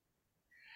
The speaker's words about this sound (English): Bless you. Jeez. Fuck. This is some hard sneezes. Like, when you come up, I'm not expecting to see like a nose on your face.